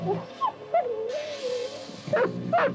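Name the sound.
dog yelping and whimpering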